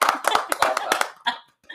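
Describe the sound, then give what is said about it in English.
A quick golf clap: about eight light, evenly spaced claps over roughly a second, followed by a short burst of voice sounds. “Golf clap. We need a golf clap for everything.”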